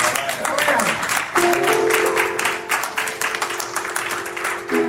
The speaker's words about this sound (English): round of applause.